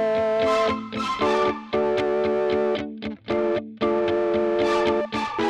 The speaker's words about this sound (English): Some guitars.